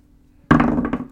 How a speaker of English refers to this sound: I'll roll a D12, the most zany of the dice, and see what I get.